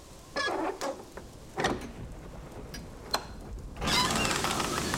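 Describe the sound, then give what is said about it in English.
On a wretched, rainy night, a metallic scrape and clunk as a cold iron door bolt is drawn, followed by short knocks and creaks, then a broad rushing hiss as the door swings open. “but I have to admit, for a moment, a tremor of terror tickled down my spine as my hand reached out for the cold iron bolt.”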